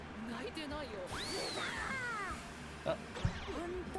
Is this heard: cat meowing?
yes